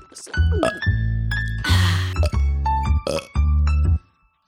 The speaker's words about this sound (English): You're burping.